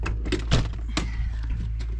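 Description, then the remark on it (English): An RV door swings shut with a dull, heavy thump, followed a moment later by a sharper click or knock, over a steady low background hum. It is raining. “I can't reach it, though, unless we close the door.”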